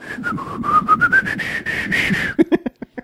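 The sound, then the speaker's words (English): A person whistles a wobbly, unsteady tune for about two seconds, then it breaks off into a few short, choppy breathy bursts. “I don't want to whistle. That's not going to sound good.”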